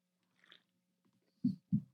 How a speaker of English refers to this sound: Hold on. Let me get a sip of this drink real quick. I'm getting a little parched.